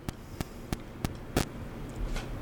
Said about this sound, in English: That sounds like a dish.